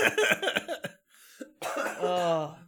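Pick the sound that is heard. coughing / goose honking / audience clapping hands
coughing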